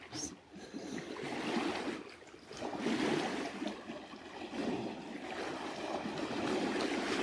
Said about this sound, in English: Just feeling into the sound current of the waves.